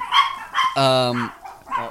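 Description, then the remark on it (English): Guard dogs bark in a quick, loud burst of four or five sharp barks, one stretched into a longer, tonal yelp, with no other sound between them. “we got it interrupted. The guard dogs. The guard dogs here.”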